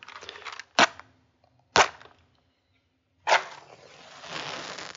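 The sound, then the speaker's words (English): A match from a matchbox is scraped several times: two sharp, crackling strikes, then a third that flares into a sustained fizzing hiss as it catches and burns. It is used to light paper in a fireplace. No voices. “So I just lit it and I burned it on the paper and now it just set a fire.”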